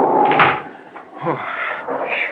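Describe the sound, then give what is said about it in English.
A wooden door is shut against a strong wind, swinging closed with a muffled thud partway through, surrounded by creaking and rustling handling noise, moderately loud. “I'll bolt this door so the wind won't rip it open.”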